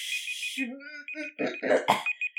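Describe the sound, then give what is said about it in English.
A timer alarm goes off with a steady, shrill high-pitched electronic tone that keeps sounding throughout, while voices exclaim loudly over it. “Quiet, timer! Frickin' timer!”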